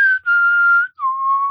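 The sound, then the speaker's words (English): Someone whistles a short four-note tune from a film, copied for a viral online trend: a few clear, sustained notes that step downward, fairly loud with no talking over it. “It's a whistle, and it's the three fingers up, right?”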